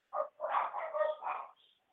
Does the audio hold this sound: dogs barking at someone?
yes